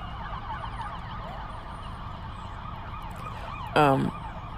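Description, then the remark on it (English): An ambulance siren wails with rising and falling tones as the ambulance drives by over steady traffic rumble, fairly loud, then a brief, sharper burst of siren near the end. “Sorry, there's an ambulance driving by.”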